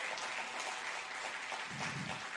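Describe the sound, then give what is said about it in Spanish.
An audience breaks into steady applause for the Heavenly Father, a dense wash of many hands clapping at an even level with no voices standing out, a slight swell near the end. “¿Cuántos le dan un aplauso al Padre Celestial?”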